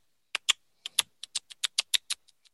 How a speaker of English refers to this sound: And then you hear the sound of coins being tossed.